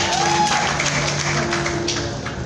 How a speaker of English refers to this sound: God bless. Great guy, man. Oh, give him a clap. Give him a clap.